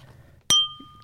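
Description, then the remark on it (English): A single bright, sharp clink of glasses touching in a toast with freshly made cocktails, leaving a clear ringing tone that fades over a fraction of a second against a quiet low background hum. “Cheers.”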